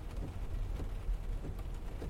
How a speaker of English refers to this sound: Don't worry, it's just a shower. A shower? A torrential downpour, more like. Get a move on. I'm drenched.